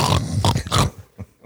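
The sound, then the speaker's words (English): A person imitates the snoring of an 8-month-old pit bull puppy with three loud, rough snorting grunts in quick succession, followed by a few softer, quieter snuffles trailing off. “other two dogs don't snore. I mean, every once in a while, but they're not like”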